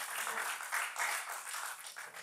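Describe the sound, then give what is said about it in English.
An audience claps together, a dense and steady burst of many hands that stays loud and fairly even for a couple of seconds with no one speaking over it. “That should make us clap.”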